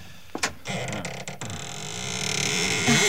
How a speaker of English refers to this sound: Doesn't sound as though that door had ever been opened. Well, a little oil on the hinges will fix that, all right.